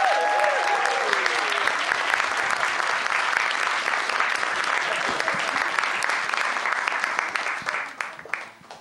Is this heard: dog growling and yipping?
no